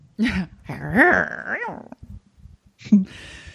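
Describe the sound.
A person mimics a dog barking: a few loud, gruff vocal barks and a drawn-out yelping bark, then a brief pause and one last short bark.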